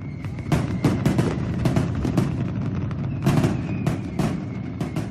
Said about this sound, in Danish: En af de mest ikoniske traditioner er fyrværkerishow. Byer over hele landet arrangerer store fyrværkeriopvisninger om aftenen den 4. juli, og det er et spektakulært syn, der symboliserer festlighed og uafhængighed.